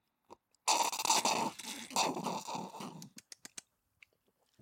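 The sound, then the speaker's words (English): A long, noisy slurp of a cocktail called the King's Heels lasts a couple of seconds with a wet, bubbling, fluctuating hiss, followed by a few short sharp clicks and swallowing sounds. “And we'll take our slurp now.”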